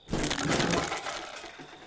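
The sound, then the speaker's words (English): A loud crash of a wooden chair smashing apart as a person steps on a bottle, slips backwards and falls through it: one sudden splintering burst that rattles on briefly before fading into scattered debris. “steps on a bottle, slips backwards, and just smashes through a chair.”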